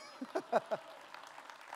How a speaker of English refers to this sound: Out of those 11 things, we accomplished 9 of them. It's pretty incredible. We accomplished 9 of them. I thought that might render an applause.